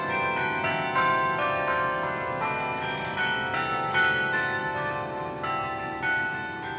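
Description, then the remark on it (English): Carillon church bells ring out from a tower, heard at an office during the workday, in a continuous, overlapping peal, many tuned bells struck in quick succession with long shimmering tones blending together, loud and steady throughout with no voices. “These bells have been the soundtrack to our workday, and while it's nice to be important enough to have a soundtrack, like most kinds of fame and fortune, it does come with some complications.”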